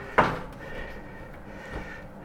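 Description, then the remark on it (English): An oven door that doesn't stay shut on its own is pushed closed with a sharp thump, followed a moment later by a softer knock as it settles, against a faint hum. “Now, because my oven doesn't work too well, like, the door is actually open. I gotta keep it closed like that.”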